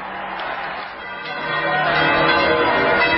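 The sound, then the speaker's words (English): The bells of St. Peter's Basilica ring out over the roar of a large outdoor crowd, signalling that the cardinals have chosen a new pope; the din swells louder after the first second and holds steady, with no clear speech. “That's when you hear St. Peter's bells, which means two-thirds of the cardinals have agreed.”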